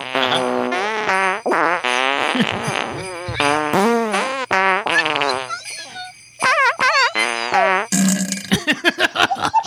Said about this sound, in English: You know, he could actually fart jingle bells. It's a fact. It's a fact.